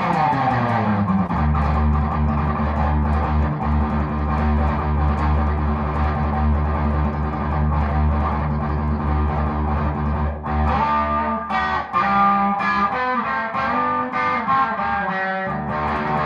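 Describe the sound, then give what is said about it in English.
An electric guitar on a Stratocaster plays a loud, sustained riff with a bright, slightly distorted tone, shifting after about ten seconds into choppier, rhythmic chord strikes with no voices. “So the only time you'll hear me on a Strat is”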